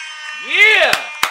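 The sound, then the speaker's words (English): A loud, brassy air horn blast swells and bends in pitch over a steady high drone, then two sharp percussive hits follow in quick succession. “Handcuff and motherfucking air horns.”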